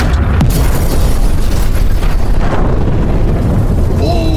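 A massive hydrogen bomb explosion: a loud, deep, roaring rumble that stays heavy and continuous for several seconds without fading, with crackling debris noise layered over the low boom.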